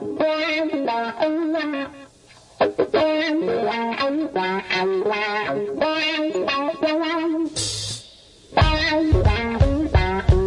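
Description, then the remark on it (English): A distorted electric guitar riff plays loud, repeating a choppy melodic phrase of quick notes, with two brief pauses before it kicks back in heavier near the end. “That's a riff.”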